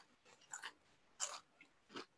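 Crisp crunching as someone chews a snack mix of popcorn, chocolate-covered pretzels and potato chips, with three or four sharp bursts spaced about half a second apart and quiet pauses between bites. No one speaks.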